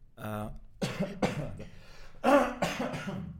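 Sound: cough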